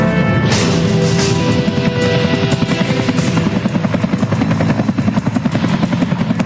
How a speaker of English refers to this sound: Sir, we've got some traffic incoming. Looks like a sightseeing helicopter. Unit 2, get an eyeball on that chopper. Agent Michaels, get FAA flight plans and authorization records on that craft.